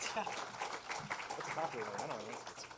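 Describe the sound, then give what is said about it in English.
An audience at the end of a panel discussion breaks into sustained applause, a dense, steady patter of many hands clapping, with a few voices calling out over the noise. “Round of applause.”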